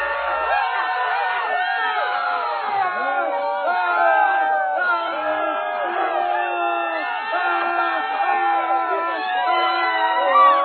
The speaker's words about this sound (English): So watch, I'm going to hold up this card. This card means to scream and shout. So I'm going to hold up this card. Okay, here we go. Card up. Card down. Card up. Card down. Now really loud.